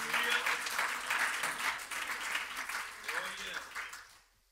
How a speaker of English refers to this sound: Would you clap your hands to the Lord about the power of repentance?